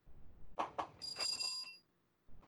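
A small hand bell is shaken, giving a couple of quick clanks followed by a bright, shimmering ring that hangs briefly before fading out. It is fairly quiet, with no one talking.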